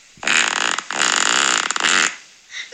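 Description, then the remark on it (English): A long, loud, rasping fart from a sleeping mother while co-sleeping with her child, breaking into two sustained buzzing bursts with a brief gap, then trailing off into a faint sputter. “Mum, you pooed on me.”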